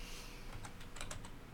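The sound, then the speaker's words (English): Quick keystrokes clatter on a computer keyboard, about eight light clicks in an uneven burst, fairly soft against a faint background hum, with no talking, as someone types to get a phone number for a Skype call. “Oh, it would help if I had the right keyboard.”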